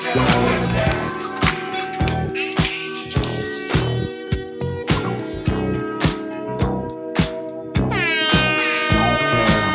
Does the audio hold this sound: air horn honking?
yes